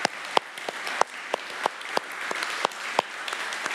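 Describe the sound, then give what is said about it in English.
A church crowd applauds steadily to acknowledge and appreciate a pastor, a dense wash of many hands clapping with a few sharper individual claps standing out at an irregular rhythm, no voices over it. “If you clap too much, you'll torture him.”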